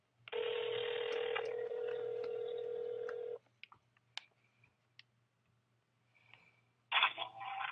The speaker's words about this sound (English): So I'm calling my friend Seth first.